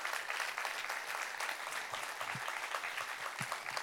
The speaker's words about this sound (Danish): Vores hædersgæster, der sidder her foran, står bagved i de gule t-shirts, nemlig vores fightere. Rigtig, rigtig hjertelig velkommen til jer, og giv også lige vores fightere en kæmpe klapsalve.